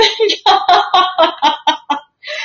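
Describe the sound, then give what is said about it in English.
A pigeon named Jimmy coos in a quick rhythmic string of about eight throaty, clucking pulses, fairly loud, then a brief pause before one more drawn-out call. “Or Jimmy the Pigeon always announces my arrival.”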